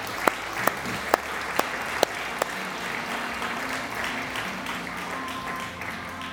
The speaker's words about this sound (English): So if you join me just in giving thanks to God with an applause.